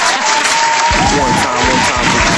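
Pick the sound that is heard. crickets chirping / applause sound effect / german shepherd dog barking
applause sound effect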